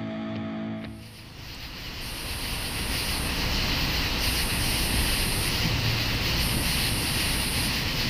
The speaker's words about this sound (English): Hear that sound? It's one we never hear in Idaho, cicadas. But after 3 days of travel, I'm recording this at an RV park in Grain Valley, Missouri, more than 1,100 miles from home.